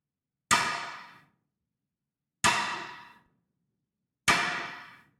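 Three loud, evenly spaced blows of a staff striking the floor, each a sharp ringing clang that fades over most of a second, with silence between and no voices.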